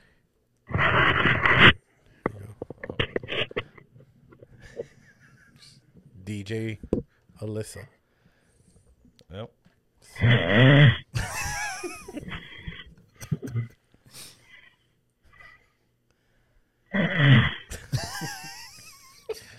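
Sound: person snoring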